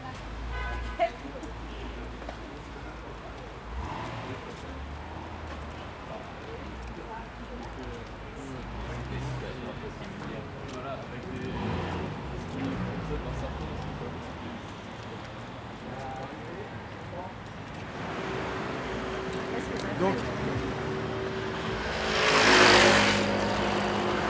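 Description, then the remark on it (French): Steady roar of heavy road traffic in both directions on the Route de Ferney in the early evening, cars swelling past one after another, a sustained horn toot near the end and a loud pass just after, with muffled voices in the mix. “Il y a beaucoup de trafic dans les deux sens, d'ailleurs plutôt dans ce sens-là.”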